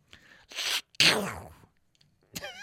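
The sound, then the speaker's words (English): A voice imitates a cartoon duck sneezing: a breathy wind-up, then one loud, explosive sneeze that trails off, followed by a brief pause and a short squawky, warbling duck-like vocal. “You ever hear Donald Duck sneeze?”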